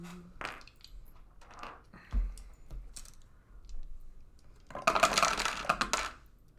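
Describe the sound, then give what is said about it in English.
Regular dice clatter across a hard tabletop as damage is rolled in a game, a few scattered clicks and knocks first, then a dense, rattling burst of tumbling toward the end. No one talks. “So. Roll damage. What is the damage for the spooky arrows? Do they have special dice or? No, they use regular dice.”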